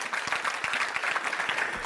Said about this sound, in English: I'm going to wait while 10 people clap their hands.